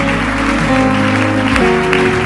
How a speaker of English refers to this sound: Clap your hands.